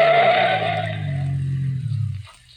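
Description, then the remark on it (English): A car's tires screech loudly as it swerves off to the side of the road at a curve, the high squeal fading while a low engine rumble carries on for a couple of seconds before cutting off. “I ran to the turn and then cut off to the side of the road.”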